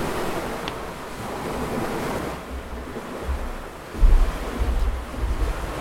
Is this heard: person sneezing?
no